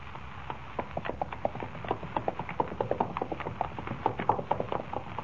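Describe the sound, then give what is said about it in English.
Hooves of a horse carrying two riders to a ranch clip-clop in a quick, steady stream of sharp knocks, continuing without pause over a low background rumble, with no voices. “Riding up in front of you on this horse isn't too comfortable either.”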